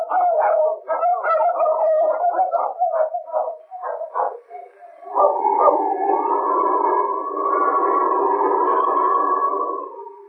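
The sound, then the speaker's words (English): Several sled dogs bark and yelp in quick, choppy bursts, then break into a long, sustained chorus of howling that rises and wavers, loud, with no talking over it. “This is something like about 50 times faster than dogs”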